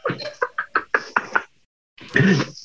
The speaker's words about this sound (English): Knock, knock, knock. Domino's. How you doing, Domino's?